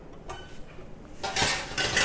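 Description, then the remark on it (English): Metal trays and casserole pots clatter and scrape as they're taken out of an oven, a brief clank early on, then a louder, sustained run of rattling cookware. No one speaks. “It's like an oven is almost like a cupboard for trays and casserole pots and whatnot. So I'm just gonna take all of those out.”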